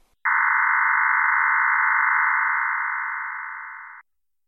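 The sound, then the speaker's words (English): A FreeDV digital voice radio signal: a steady, dense burbling hum that starts abruptly, holds for about four seconds while easing slightly in loudness, then cuts off. No one speaks. “But hang on, you say, how do I know what a FreeDV signal sounds like, so I can even identify one on the bands?”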